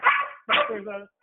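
A dog lets out two loud barks in quick succession, the second drawn out into a longer, whiny tail before cutting off.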